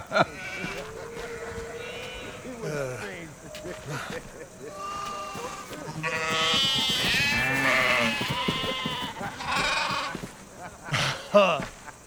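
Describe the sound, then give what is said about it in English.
Several sheep bleat repeatedly with wavering, nasal calls, fairly loud, overlapping one another in an outdoor farm setting. “Stay with the sheep.”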